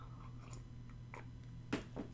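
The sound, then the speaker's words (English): Soft mouth sounds of someone sipping coffee, with a couple of brief slurps and a swallow near the end over a low steady hum. No one speaks. “and I'm going to take a sip of coffee here real quick.”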